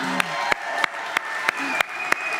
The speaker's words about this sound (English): Yeah, just stand up and give Abby a round of applause.